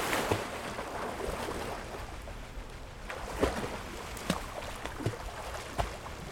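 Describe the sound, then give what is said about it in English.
Steady rushing warm water of the Caribbean Sea with waves sloshing as a person falls overboard, punctuated by a few brief, sharper splashes in the second half. No one speaks. “Any cry from my throat was pinched off short as the blood-warm waters of the Caribbean Sea dozed over my head.”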